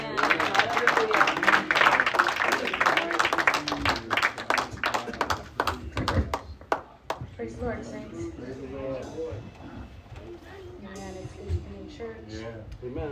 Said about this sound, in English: And everybody give the Lord a hand clap.